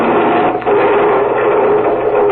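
A plane crash sound effect of a plane coming down much too fast: a loud, steady roar of rushing noise with a droning engine-like hum, dipping briefly half a second in, then continuing at full strength. No voices.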